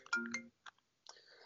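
A phone left off airplane mode gives a notification chime: a bright, multi-toned melodic burst, a couple of short blips, then a sustained electronic tone, ending with a sudden loud clunk. No one speaks.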